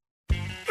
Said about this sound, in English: I'm feverish and stuffy, but I still see you checking out my sweet cough cloud. See, when I cough, I make a cloud of 3,000 droplets of saliva.